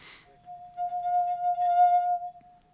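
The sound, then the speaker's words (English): A wine glass gives off a steady, pure ringing tone that swells and holds for about two seconds before cutting off, preceded by a brief rustle, with no one talking. “My household object is a wine glass.”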